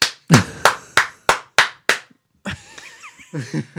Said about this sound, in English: And this meanwhile, giving her the one-man applause.